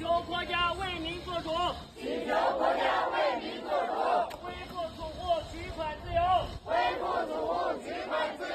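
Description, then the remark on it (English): A crowd of protesting bank customers, some kneeling, calls out for help, shouting together in loud, chanting bursts, voices rising and falling in rhythmic waves with brief pauses between calls, over a steady murmur of outdoor noise. “Some customers were seen kneeling as they called out for help.”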